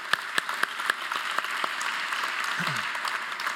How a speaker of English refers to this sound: So thank you all. Can we give a round of applause for the leadership and the staff?